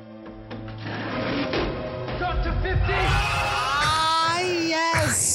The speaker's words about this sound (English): And all I can think about is that scene from Princess Bride where he slams up the ratchet.